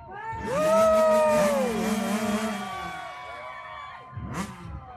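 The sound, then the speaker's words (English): Two motorcycle engines whine loudly and continuously as two motorcyclists, the Ybarra brothers, race in circles around one another inside a large iron sphere, the pitch sweeping up and down, with a brief surge near the end. “a large iron sphere in which two brave motorcyclists, known as the Ybarra brothers, defied gravity and risked life and limb by racing their motorcycles in circles around one another inside the globe.”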